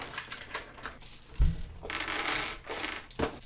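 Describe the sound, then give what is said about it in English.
Dice are rolled in a tabletop game, rattling and clattering across a hard tabletop, starting with light taps, then a solid thump and a run of tumbling clicks before settling on a 1. Fairly loud, no voices. “Pick up your dice and roll them.”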